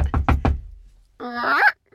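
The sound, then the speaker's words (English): Four quick, firm knocks on a door in an even rhythm, solid, followed after a short pause by a person speaking briefly with a rising tone. “Okay, you knock on the door.”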